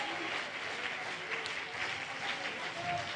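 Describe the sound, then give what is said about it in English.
An audience claps their hands with expectation after a prayer, a dense, continuous wash of many hands sustained at an even, fairly loud level with faint murmuring voices beneath. “Come on, can you clap your hands with expectation?”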